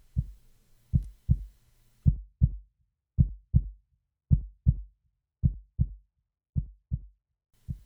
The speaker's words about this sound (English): It was the heartbeat of Daphne, the heartbeat of his lost love.